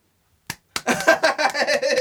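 Hand clapping in applause for drafting LaMelo Ball: two sharp, separate claps after a moment of silence, then a fast, steady run of loud claps that carries on to the end with no talking.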